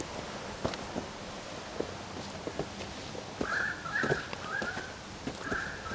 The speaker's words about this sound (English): Hear that sound, that bird there? Yeah. That's how you know it's becoming later. Whenever I hear that bird, it's always the afternoon. It's a weird fact. I never hear it in the morning, it's always in the afternoon.